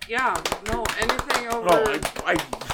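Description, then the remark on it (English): Scattered applause, a quick irregular run of sharp hand claps, rises over several people's voices talking and calling out, fairly loud for about three seconds. “Pause for applause.”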